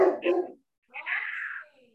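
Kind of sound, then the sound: animal, dogs barking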